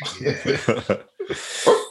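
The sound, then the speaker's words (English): A person mimics a small chihuahua's yapping: four quick, high, clipped yips in a row, a brief pause, then a longer whiny yelp. “What was that little chihuahua about, man?”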